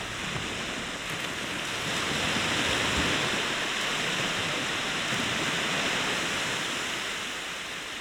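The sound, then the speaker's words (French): A steady, broad roar of ocean swell, with waves washing in a continuous rush that gently builds and eases again, with no voices present. “C'est ça qui fait cambrer les vagues.”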